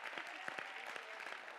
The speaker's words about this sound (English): Go ahead and clap your hands and give him the praise.